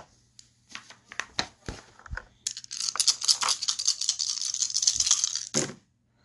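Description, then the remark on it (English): A few sharp clicks and taps, then a steady, bright clattering rattle of five dice being shaken and rolled for a knowledge roll for about three seconds before it stops abruptly. No one speaks. “And then I need to do a knowledge roll. Oh, I get 5 dice.”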